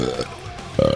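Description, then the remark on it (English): Two croaky, low burps after eating, a short one at the start and a louder, buzzier one at the end, with a quiet pause between them and no talking. “Sorry, we just ate, so...”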